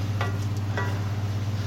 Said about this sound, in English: I stir it through so it's a really even, ricey, mushroomy mix.